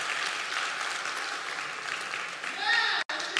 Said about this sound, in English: Oh, yeah, give a round of applause.